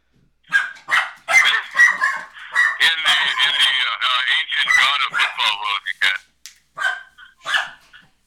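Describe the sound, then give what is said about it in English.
A dog barks excitedly and almost without pause, loud, with rapid bursts blending into drawn-out, yelping cries for several seconds. “You seem to piss my dog off with that goat comment”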